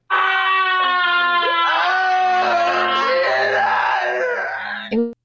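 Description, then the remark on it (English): A loud, drawn-out wailing scream from a horror movie holds for about five seconds, its pitch wavering and straining before cutting off abruptly, with no speech around it. “A lot of screaming in this movie.”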